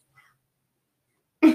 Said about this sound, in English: oh my gosh, my dog is choking outside my door. Listen closely, you can hear it.